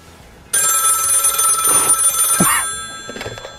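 telephone bell ringing

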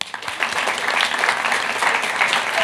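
audience applause

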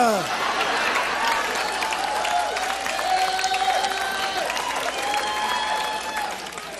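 audience applause and cheering

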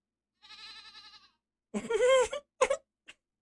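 goat bleating

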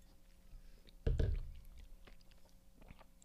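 sipping wine

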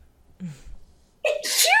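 sneeze

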